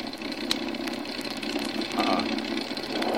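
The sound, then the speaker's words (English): An aircraft's engine number two starts and runs rough and loud, missing badly: a steady low drone broken by uneven knocking pulses, swelling slightly toward the end with no voices over it. “Engine number two.”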